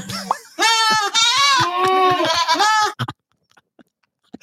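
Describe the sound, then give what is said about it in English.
A goat bleats loudly, a long wavering cry broken into a few pulses over about two seconds, followed by near silence with a few faint clicks. “The goat then helped flush the guy out of the woods, and he got arrested.”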